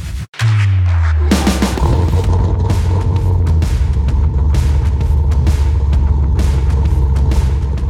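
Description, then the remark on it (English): A car engine fires up after a short pause and settles into a loud, steady rumbling roar with harmonic revving tones, continuing throughout with no talking. “Those car sounds were from Brandon at the Cars and Health Bars podcast.”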